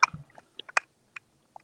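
Wet swallowing and mouth noises picked up by a microphone: a low gulp followed by several short, sticky clicks spaced irregularly, fairly quiet, with no talking.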